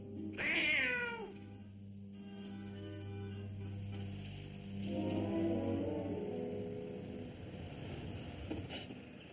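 cat meowing

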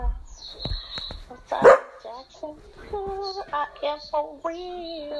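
dog barking

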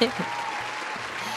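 applause

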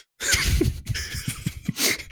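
loud sneeze

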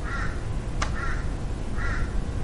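crows cawing

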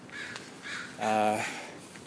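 crows cawing

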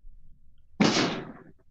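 firework going off outside

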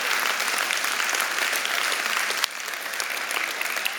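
audience cheering and applause

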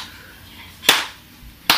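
hand clap

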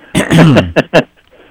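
throat clearing

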